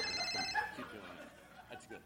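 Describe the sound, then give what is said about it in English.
A person imitates a ringing telephone with a bright, warbling vocal trill, repeated in quick bursts over about two seconds, with faint chuckling mixed in. “It's a phone call, right?”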